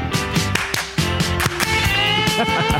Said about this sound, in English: Nailed it. I love a well-placed hand clap. I'm not going to lie to you. It's a very minimal hand clap, but it's there.